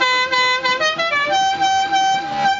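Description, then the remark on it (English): A loud musical car horn like the one from The Dukes of Hazzard, sounded in place of a train whistle, blares a short melody, its bright, buzzy tone stepping through several pitches in quick succession for a couple of seconds, with no voices over it. “That's no sound for a train whistle to make.”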